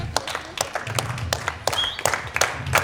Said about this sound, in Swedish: Och vinnaren är, kan vi inte klappa lite för att få lite så här feeling?